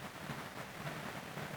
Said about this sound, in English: That's the rain. It's bucketing down, which means possible power outage.